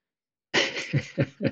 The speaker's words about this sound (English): Sorry. Spicy cough.